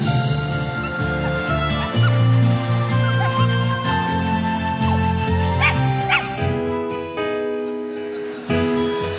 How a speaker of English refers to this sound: Well, it looks like we got some new dogs. Oh, the little one. Look at you. Look at you. How cute.